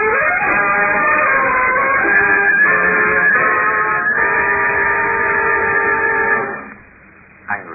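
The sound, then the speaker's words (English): An eastbound special train at Centerville Junction sounds a long, loud, steady horn blast for several seconds, its droning tones holding strong before cutting off abruptly into quiet, with a brief thump at the end. “Isn't it, that a man obsessed with the one thought of escape should find it under the wheels of an oncoming train.”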